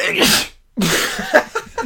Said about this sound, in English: Wow. Microphone explodes. The atomic power of that sneeze. Bless you.